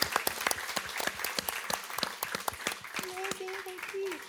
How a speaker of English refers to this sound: Big round of applause.